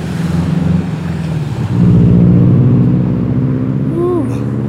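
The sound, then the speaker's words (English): Steady street traffic recorded beside the street with cars rumbling past, a continuous low engine roar that swells as a vehicle goes by, with a brief higher whine near the end. “lots of traffic.”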